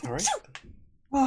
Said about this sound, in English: Bless you. Thank you. It is very dusty in here.